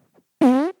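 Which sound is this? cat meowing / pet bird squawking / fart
fart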